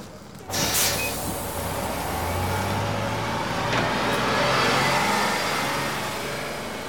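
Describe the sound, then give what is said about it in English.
A steady, loud bus engine drones and rumbles continuously, with a low idling hum and road noise that swells slightly before easing off. “Welcome on board the Men in Charge bus.”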